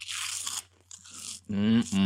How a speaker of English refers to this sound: And we are, as we speak, munching on some Flamin' Hot Cheetos Puffs right now. For our own enjoyment.